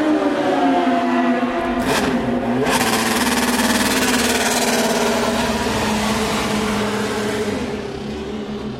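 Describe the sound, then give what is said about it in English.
A loud race car engine, the AF Corse number 95 car leaving the pits after its last stop at the 2010 24 Hours of Le Mans, revs hard and pulls away, its high-pitched whine holding strong with a sharp burst of throttle early on, no voices heard. “beneath me right now, the AF Corse number 95 car of Alesi, Fizzy Keller and Tony Verlander goes out”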